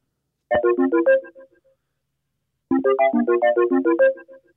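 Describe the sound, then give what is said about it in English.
A Snapchat outgoing call ringing tone: two bursts of quick, bright melodic chimes separated by a short pause, clear and fairly loud, with no talking. “It sounds like Facebook. Oh, is it Snapchat? It's Snapchat.”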